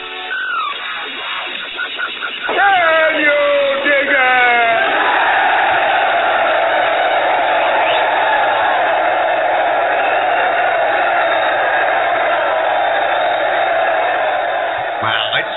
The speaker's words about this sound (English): That the intro has applause like built in. That's just awesome.